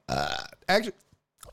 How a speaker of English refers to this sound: Actually, oh my god, I burped and the Jameson came up. Oh, that was awful. It burned my throat. It was like a backfire. Like my fucking gut just backfired in my throat. What the fuck was that? Jesus Christ, that was terrible.